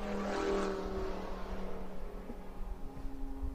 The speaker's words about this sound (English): Here comes the next group of cars through. Got a car here that's the 2-9 car.